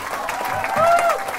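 An audience applauds several speakers at the close of a visual effects mentoring event. A dense, steady patter of many hands clapping, with a sliding high whistle rising above it partway through.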